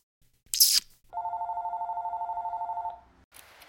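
A telephone rings with a single long, steady electronic trill lasting about two seconds, preceded by a brief sharp click. No one speaks.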